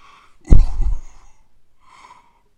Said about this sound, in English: Excuse me. Oh, no, I've got a cough.